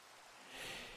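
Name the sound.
rain falling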